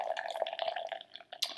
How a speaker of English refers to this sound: Pouring my beers in.